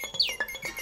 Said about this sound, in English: It's birds.